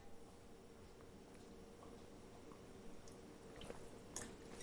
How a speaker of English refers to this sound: As I'm sipping on this, I'm realizing we should have told them what the beer was.